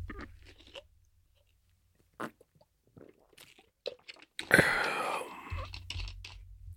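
Someone drinking water that is not fizzy: scattered small clicks and handling taps, then a sudden loud, hissing, fizzy splash of noise lasting about a second, followed by quieter swallowing sounds over a low hum.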